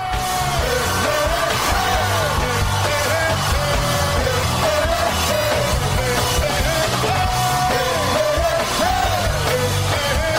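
A crowd claps steadily and loudly for about ten seconds on the radio talk show Everything Old Is New Again, a dense wash of applause threaded with rising and falling whoops and yells.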